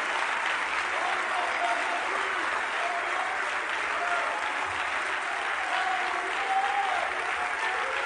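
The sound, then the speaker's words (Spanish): Sustained applause from a large audience at a church worship service, clapping in praise to God and the Lamb, a dense, even wash holding steady for about eight seconds, with faint voices and cheers mixed in beneath it. “Oh, dale un fuerte aplauso de alabanza a aquel que está sentado en el trono y al Cordero.”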